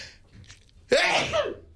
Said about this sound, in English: I don't normally welcome people with a sneeze, but I'm just clearly overcome.